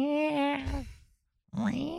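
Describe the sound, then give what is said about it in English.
A person imitates cat noises, making two drawn-out, meow-like vocal sounds with a brief silence between them. The first wavers and drops off, and the second rises into a whiny tone. “Okay, so you're doing cat noises”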